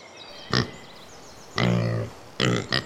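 A small pig grunts and snorts greedily as it eats, three loud, rough bursts, one short, one long and drawn out, then a final pair, over a low, steady background hiss. No one speaks.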